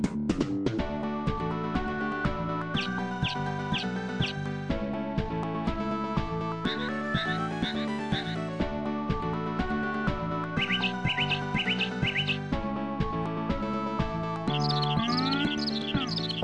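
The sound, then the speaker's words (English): A full, steady piece of music runs throughout, laced with bright, rapid chirping and buzzing figures that imitate insects, with sustained humming tones underneath and no voices. “It emulates insect sounds throughout the song. There's like humming and chirping and stuff.”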